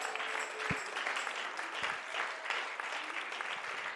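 A crowd claps their hands together to the Lord, steadily for several seconds, a dense, even wash of many hands with no pauses, moderately loud and without voices on top.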